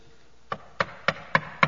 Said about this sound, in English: I'm standing at the door, knocking. If you will hear my voice and open the door, I will come in and eat with you, and you with me.